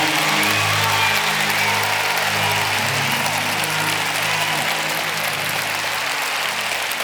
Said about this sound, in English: God says, if you know I'm not finished with you yet, and this starts a new chapter in your life, clap your hands like you are better than your old self. Clap your hands.